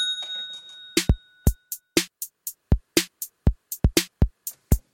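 A bell's ringing tone hangs and fades over the first second, then a quick, uneven series of about a dozen sharp percussive hits follows. No one speaks.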